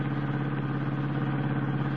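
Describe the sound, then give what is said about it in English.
A car engine roars loud as Clark Kent jams his foot down on the accelerator, sending the car through a foggy night. It holds a steady, throbbing drone with a rattly edge for the full two seconds, with no voices over it. “Jamming his foot down on the accelerator, Clark Kent sends the car leaping through the foggy night toward the shabby little coffee shop.”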